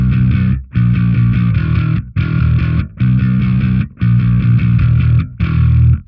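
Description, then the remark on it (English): A loud distorted electric bass guitar, played through its P-bass pickup, plays a thick, fuzzy riff in six sustained phrases, each cut by a brief pause, with no talking over it. “if I turn the distortion off”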